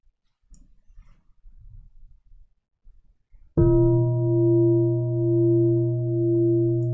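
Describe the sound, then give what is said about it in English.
After a few seconds of faint low rustling, a gong is struck once and rings on loudly with steady, layered tones that swell and waver slowly until the end. “When you hear this gong sound, how do your mind and body respond?”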